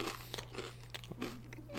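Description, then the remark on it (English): Loud crunching of a crisp fortune cookie being chewed, a rapid series of brittle cracks and snaps over about two seconds with no talking. “Just going to finish this crunch. It's a really crunchy.”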